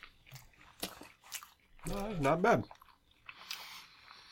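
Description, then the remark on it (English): Soft, wet chewing of a rainbow sushi roll with avocado, with a few brief squishy bites, broken by a short spoken remark in the middle, then quieter mouth sounds trailing off. “I'm going to start off with the end rainbow one here.”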